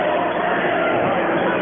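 A basketball crowd at a Central versus Junction game jeers a Junction player's air-balled three-point shot, a loud, steady wash of many voices chanting together and filling the whole short stretch without a break.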